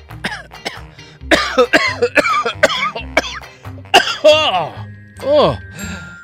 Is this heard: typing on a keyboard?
no